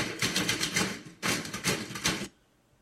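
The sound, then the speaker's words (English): Typewriter keys clack in a fast, rhythmic, percussive pattern, played as music by a typewriter ensemble: two dense bursts separated by a brief pause, fairly loud, then stopping abruptly into near silence. “There's a whole album of that by the ….”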